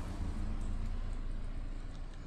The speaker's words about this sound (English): Oh, yeah, they've got, oh, there goes a car.